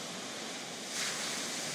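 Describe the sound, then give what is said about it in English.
A steady, soft wash of ocean surf rolling onto a beach shore, a continuous hiss that swells slightly midway through, with no voices present. “You come back to your breath now, watching how it ebbs and flows through your body just as the waves move upon the shore.”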